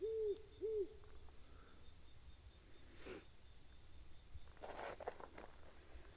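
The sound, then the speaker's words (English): Two clear owl hoots sound close together at the start, loud and mellow, followed by a quiet nighttime stillness with a few faint rustles and soft noises. “You can hear the owls.”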